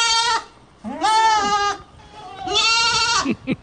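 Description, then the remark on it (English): A goat bleats three times in quick succession, each call a loud, wavering, nasal cry with a quivering tone, separated by brief pauses, without any talking. “that the goats could be played anytime you mention North Carolina.”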